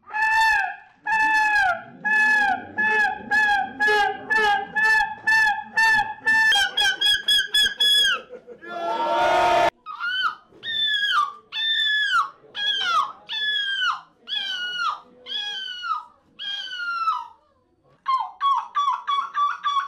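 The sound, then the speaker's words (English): A person in a gull-screeching competition imitates a seagull's screech with a long run of loud, harsh, descending squawks, some rapid and clipped, others drawn out, with one brief noisy burst midway. “People come together here to have a competition on gull screeching. So they try to make the best of imitating the sound of a gull, which sounds rather stupid, but actually it's real science.”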